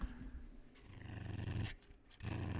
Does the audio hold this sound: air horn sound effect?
no